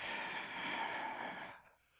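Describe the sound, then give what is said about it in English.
A baby boy's deep, breathy exhale, soft, drawn out for over a second with a slightly raspy, airy texture before trailing off into quiet. No one speaks. “He's not cooing. He's breathing deeply.”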